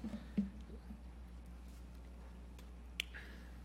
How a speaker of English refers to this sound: Let me get me a bottle of water here.